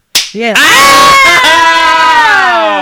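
The sharp smack of a high five, then two people let out a loud, shrill, sustained scream together, piercing, with a short wavering cry leading into a long high-pitched wail.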